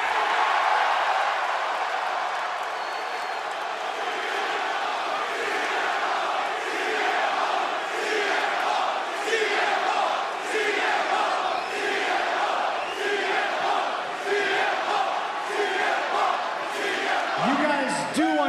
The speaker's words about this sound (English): You want to chant? You go ahead and chant.